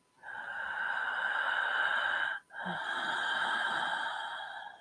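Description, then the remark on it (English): A voice imitates heavy breathing: two long, loud, raspy breaths, one out and one in, with a brief pause between them. “Terrible, carroty breathing.”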